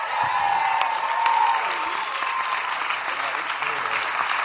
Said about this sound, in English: Start applauding right now for my friend, everybody